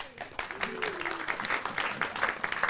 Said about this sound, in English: Martin Luther, 1483 to 1546, a round of applause for our German students.